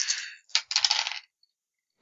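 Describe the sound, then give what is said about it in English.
Dice clatter onto a table in a quick burst of bright, rattling clicks, a pause, then a second longer scatter of rattles, with another faint clack at the end. “God damn it, stop dropping dice.”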